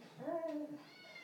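A single drawn-out cat meow that rises and then falls in pitch, heard alone at moderate volume, fading into a faint tonal tail.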